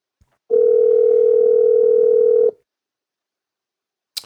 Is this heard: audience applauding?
no